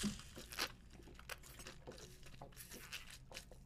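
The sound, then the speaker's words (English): Wet slurping as a man drinks water, with a handful of irregular noisy gulps and sips spread over a few seconds and no talking. “Oh, he's just slurping it down.”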